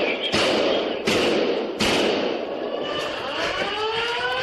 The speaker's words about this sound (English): As officers sprint past student artwork and photos. Shots fired, move. You can hear shots echo through the hallways.